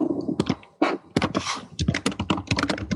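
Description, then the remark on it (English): Rapid, uneven clatter of keys being typed on a computer keyboard, fairly loud, with dense bursts of clicks and brief pauses between runs. “Oh, you're just typing at me.”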